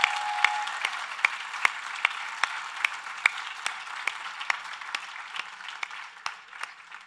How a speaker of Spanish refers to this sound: Bueno, yo creo que deberíamos darle un aplauso más fuerte a Jesús. I think we should give a round of applause to God.